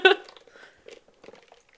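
Someone slurps a drink during a drink break: a sharp, loud wet slurp at the start, followed by a series of softer, irregular sips and gulping noises. No one speaks.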